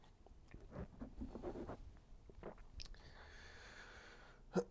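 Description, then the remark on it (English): Quiet mouth sounds of someone sipping and swallowing water, with soft wet clicks and gulps, a faint rustle, and a sharper click near the end. “I gotta take a sip of water.”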